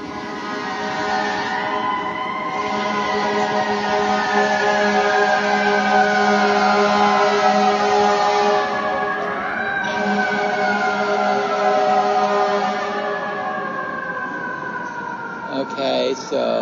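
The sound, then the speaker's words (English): Emergency sirens on a New York City street wail loudly and continuously, their overlapping tones sliding slowly up and down in pitch over a low rumble of traffic. “One thing in New York that's endlessly part of New York, it's sirens.”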